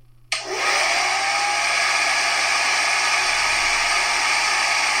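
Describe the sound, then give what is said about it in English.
A hair dryer switches on abruptly after a brief silence and keeps blowing in a loud, steady rush of airy noise, with a motor whine that rises briefly as it spins up. “Is that your final answer? The hairdryer.”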